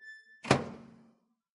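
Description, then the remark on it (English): A microwave door shuts with a single solid thunk, ringing briefly with a low hollow resonance that fades within about half a second. A faint steady tonal hum comes just before. “Well, you put it in the microwave.”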